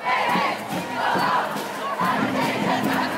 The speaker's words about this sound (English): Some of our colleagues at EdSource were in San Francisco last week, and they recorded young people shouting things like, "Science, not silence! Science, not silence!"